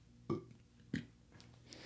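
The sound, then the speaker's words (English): Two short, throaty burps about half a second apart, fairly loud, with a little faint rustling afterward and no talking. “I don't know why I burp sometimes.”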